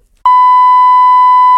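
A loud, steady censor bleep covering a spoken phone number: one unbroken high-pitched tone that starts abruptly after a short silence and holds at constant volume for over a second, with no voices.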